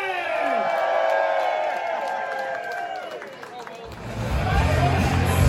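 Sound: crowd cheering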